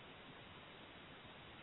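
A faint, steady hiss of line static fills the whole moment, even and unbroken, with no voices or other sounds over it.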